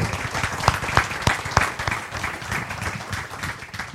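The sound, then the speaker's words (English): A crowd at an American Planning Association program on Chicago's draft food plan applauds steadily for several seconds, dense overlapping claps forming a continuous wash, with a few sharper individual claps standing out near the start before it gradually softens. “Let's have one more round of applause”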